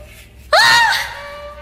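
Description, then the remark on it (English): A woman's sudden, loud shriek of fright bursts in after a quiet moment, a single high-pitched cry that rises sharply and then trails off. “shrieked, and I brought my flashlight up, futilely thinking it might be used as a weapon.”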